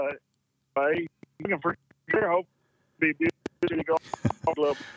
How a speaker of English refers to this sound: Okay, we're losing you, man. I don't know what's up with this phone system, but it's cutting out horribly.